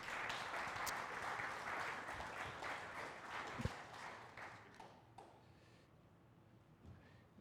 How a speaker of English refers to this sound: We can give them a round of applause as they come up.